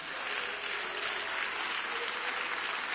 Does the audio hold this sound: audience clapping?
yes